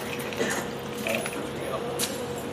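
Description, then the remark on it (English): A set of car keys jangles in a few short, bright metallic clinks spread over a couple of seconds as they are handed over, over a steady low hum. “Does anyone have their car keys on them? I could borrow one for a second.”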